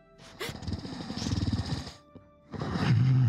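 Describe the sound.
A voice imitates the loud snoring of a person asleep in a guest room: two long, rough, rattling inhales separated by a brief pause, the second rising into a low, droning groan.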